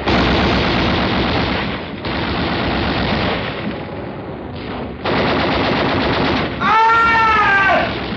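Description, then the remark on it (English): Loud, dense battle gunfire during a beach landing under a dark sky, with landing craft coming in over the breakers: rapid machine-gun bursts roaring almost without break, with a few short lulls, and a wavering high-pitched whine rising over the barrage near the end. “The sky was dark, lit only as gunfire.”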